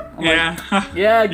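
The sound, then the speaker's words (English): A voice mimics the chirp of a Nextel walkie-talkie, as used by attraction hosts at Universal: a short run of bright, tonal, beep-like bursts with rising and falling pitch, loud, no real speech around it. “So I hear that beep every single time. I'm like, what is going on with this Android? I'm like, oh, this is not even an Android. This is a Nextel.”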